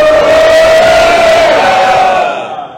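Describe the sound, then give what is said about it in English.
A crowd shouts together in one sustained, loud collective yell, voices blending into a single drawn-out chant that holds steady for over two seconds before fading out. “And reach up to the ceiling. Go!”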